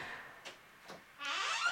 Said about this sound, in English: Creaky creak. Our cat is again playing with the door and being jealous of our time.